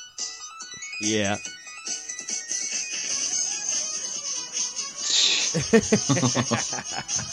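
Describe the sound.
A bright, bleepy chiptune internet meme melody with synthetic meow-like notes loops steadily at moderate volume, while people talk and react over it.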